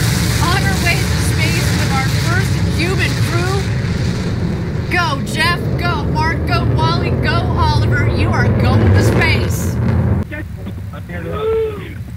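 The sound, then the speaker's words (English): A loud, continuous New Shepard rocket engine roar as the rocket launches and clears the tower, rumbling steadily for the whole stretch, with people's voices and cheering-like calls layered over the deep, wind-like blast. “And New Shepard has cleared the tower.”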